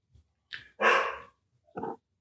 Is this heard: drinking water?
no